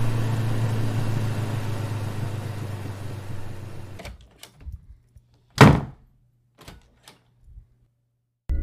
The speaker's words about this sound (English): I lock the door as soon as I am inside to make sure that no one sees me.